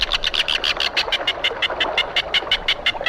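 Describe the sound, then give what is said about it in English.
A rapid series of shrill, rasping calls of a red-billed tropicbird repeats in a steady chattering rhythm, loud, with faint background noise and no talking. “The red-billed tropic bird. One of our favorite species on last week's trip to the Galapagos Islands.”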